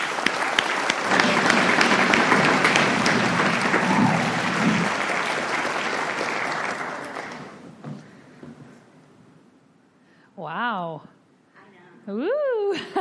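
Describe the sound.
Sustained audience applause, a dense wash of clapping for about seven seconds that fades out, followed by a woman's voice beginning to speak alone.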